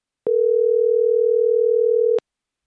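A steady telephone dial tone hums for about two seconds while calling someone back on their phone number after a poor Skype connection, a single unbroken low pitch, clear, starting and stopping with soft clicks. No one speaks.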